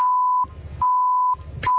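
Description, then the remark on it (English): Three loud, steady electronic beeps at a single pitch, each separated by a brief burst of muffled, rumbling noise; the last beep is cut short. “And then three beeps?”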